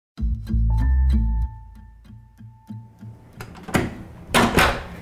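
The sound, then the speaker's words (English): A hotel room door being worked on arrival at a hotel during a summer road trip: a low thump and a brief electronic tone, then a run of mechanical clicks and rattles as the handle turns and the door swings. No talking. “Right now's the door.”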